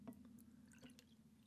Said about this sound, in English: Nice pour. Thank you.